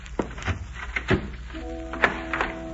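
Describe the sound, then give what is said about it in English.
A door thuds shut, then a heavier thump and a sharp click as it is locked. A low, steady humming tone enters partway through and continues beneath the sounds. “Sorry, but I'll have to lock your door.”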